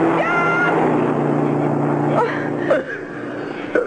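A car engine drones steadily as a car approaches on a road at night, a low harmonic hum holding at an even level throughout, with a few brief, indistinct vocal sounds near the end.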